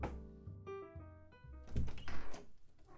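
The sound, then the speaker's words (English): A front door is opened to let a guest in: a drawn-out tonal creak followed by a couple of solid thunks and a rush of noise as it swings open, with no talking. “Let me get the door.”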